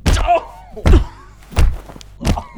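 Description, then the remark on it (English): Heavy punches land on a man's face, knocking teeth loose, four dull, meaty thuds spaced about a second apart, loud, with a short pained groan after the first blow. “Give him a minute to feel how many teeth you just knocked loose.”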